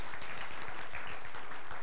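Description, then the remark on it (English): Steady applause from a crowd, a dense crackle of many hands clapping at once with no pauses, holding at an even, moderate loudness throughout, given for the people present who helped give away children's Bibles and Bibles. “Can we give a big round of applause for all here who helped us do that?”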